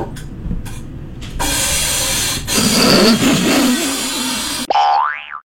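A chair squeaks and grinds in a loud, rough, scraping stretch, then ends with a sharp, twangy squeal that swoops up and down in pitch. No one speaks.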